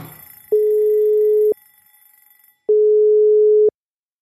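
A phone line's ringing tone sounds twice while a call is placed to a cookbook author, each a steady, loud, mid-pitched electronic beep lasting about a second, with a pause between them and no talking.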